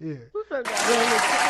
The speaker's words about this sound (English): I'm going to clap it up for them.